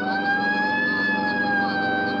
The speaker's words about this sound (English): Let's roll on it, huh, Ben? Right, I'll hit the siren. You get the light.